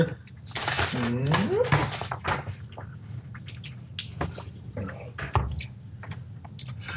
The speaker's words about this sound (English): I'll take a sip of water.